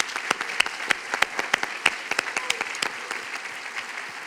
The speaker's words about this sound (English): So can we just take 2 seconds and, like, give everybody a huge round of applause for just getting in the game?